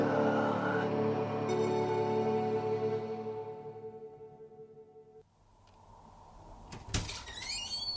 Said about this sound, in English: Fire door.